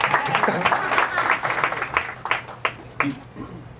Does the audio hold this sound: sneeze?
no